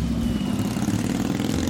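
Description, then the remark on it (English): A motorcycle engine rumbles loudly and steadily, a continuous low throaty drone with a slight revving pulse and no voices. “You contemplate stealing a motorcycle, but you don't know how.”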